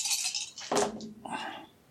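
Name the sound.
six dice being rolled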